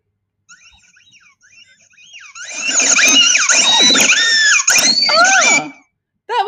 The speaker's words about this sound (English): What is that? It's a ball, a squeaky ball that I just stepped on. What is this doing out here in a tropical rainforest?